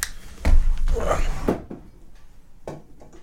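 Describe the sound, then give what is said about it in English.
Water is poured into a glass in a short splashing burst, framed by a few hard clinks and knocks of the glass being handled. “Does it sound like I'm peeing?”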